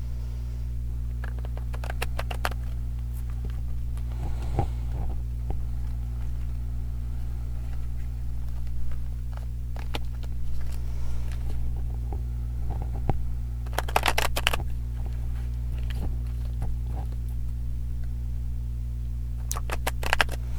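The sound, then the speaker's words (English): A deck of cards is shuffled close up, with bursts of crisp riffling and soft slapping clusters, especially around the middle and end, over a steady low electrical hum with no talking. “The cards are shuffling very strangely today. They're very, like, sticky.”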